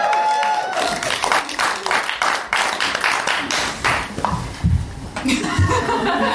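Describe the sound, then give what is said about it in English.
A short burst of scattered hand clapping from a few players at a tabletop role-playing game session after a natural 20 roll, mixed with chuckles and chatter, tapering off after several seconds. “I thought you were going to clap more than that, to be honest.”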